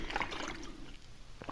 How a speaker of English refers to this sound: Have a good swig there. That's water, by the way. That's water.